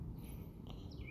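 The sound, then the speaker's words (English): Faint birds chirp in the background, with a few short high-pitched tweets and sweeping calls over a low, steady rumble. No one speaks. “These birds are loud as fuck.”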